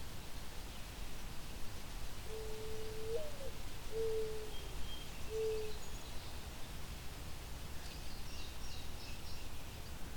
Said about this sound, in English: despite being so quiet, if you are in a very open area, they can project a fair bit. The mourning dove, and that can sometimes lead you to think you're hearing an owl in the distance.